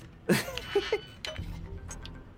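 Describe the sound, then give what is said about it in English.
Video game lockpicking: a few sharp metallic clicks and clinks at irregular intervals, followed by a softer rattle over a low, steady background hum. “Oh, lockpicking. Lockpicking. Interesting.”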